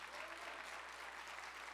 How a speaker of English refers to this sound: Clap your hands and give the Lord the glory.